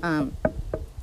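knocking on wood

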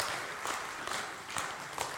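audience applauding

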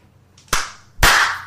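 hand clapping

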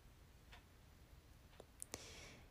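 clock ticking

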